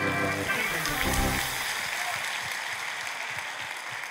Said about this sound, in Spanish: Date un aplauso.